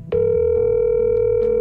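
A telephone call rings on the line: a steady, fairly loud electronic tone starts abruptly and holds without a break, with no one speaking over it.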